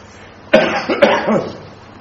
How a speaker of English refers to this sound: Okay, let me stop so I don't have to cough again.